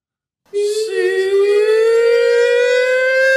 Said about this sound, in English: Oh, it's like the car alarm.